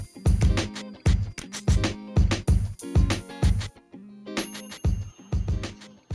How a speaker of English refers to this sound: chiming for commercial break.